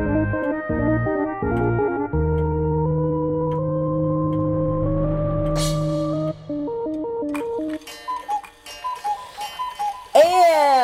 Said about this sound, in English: It was a cuckoo. With the sound of the cuckoo, you know that it is time for the Clockwork Cabaret.